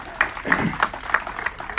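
An audience applauds a couple as they make their way back to their seats, with a steady patter of many hands clapping at moderate volume. A few faint voices mix in beneath the claps.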